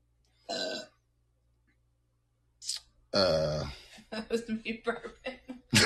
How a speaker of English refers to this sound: That was me burping.